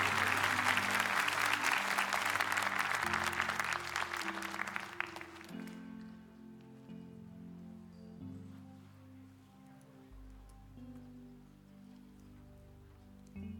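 A church audience claps loudly and steadily for about five seconds to welcome a guest pastor from South Africa, the dense applause then fading out as soft, sustained keyboard chords carry on alone.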